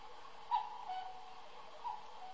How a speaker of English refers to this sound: What the hell was that? It's the cuckoo hour, folks. That's why I can't pronounce the name right. It's the cuckoo clock.